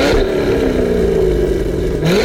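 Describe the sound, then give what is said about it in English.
The engine of a Model A car with a manual transmission revs steadily, its loud, droning pitch holding and then climbing sharply at the end, with no voices over it. “So, let's get revved up.”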